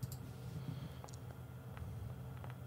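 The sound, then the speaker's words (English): Big dice clatter across a table in a quick series of sharp, scattered clicks and taps, rolled for a stealth check in a tabletop game, fairly quiet over a low background hum, with no one speaking. “Well, I brought the big dice.”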